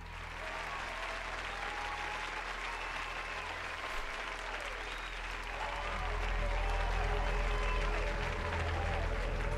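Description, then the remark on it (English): An audience applauds steadily, a dense wash of clapping with a murmur of crowd noise beneath it, swelling a little louder toward the end. “They're applauding because I thought about not smoking so much weed before.”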